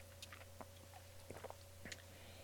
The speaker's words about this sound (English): Like, hold on. Let me take a quick sip of this.